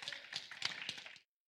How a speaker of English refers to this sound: Come on, let's give the Lord a hand clap for his word.